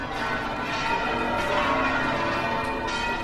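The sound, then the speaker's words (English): Church bells peal continuously from the Giralda, the cathedral's bell tower in Seville, Andalusia, Spain, their overlapping metallic tones ringing out steadily and fairly loud, with a busy wash of resonance and no voices. “One of its best-known landmarks is the Giralda, the cathedral's bell tower.”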